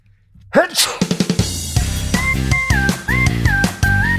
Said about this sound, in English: Sorry, I have to sneeze.